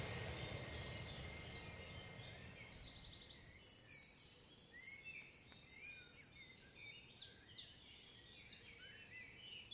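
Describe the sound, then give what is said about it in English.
A dawn chorus of many birds singing and chirping at once, overlapping trills and whistles from several directions over a low outdoor rumble, fairly faint and continuous with no voices. “Okay, it's dawn and we've just come out to hear the bird song starting.”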